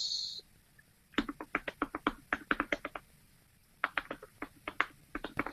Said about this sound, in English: You hear my loud keyboard? I'm sorry. That keyboard is ridiculously loud. I got a free smart keyboard at work.